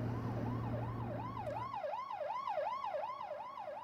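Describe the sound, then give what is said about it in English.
An ambulance siren wails loudly, its pitch swooping up and down in quick, steady cycles, with a low engine drone underneath at first that then drops away, as the ambulance arrives to take a patient receiving CPR from an arena to St. Mary's Hospital. “The ambulance arrived within 10 minutes.”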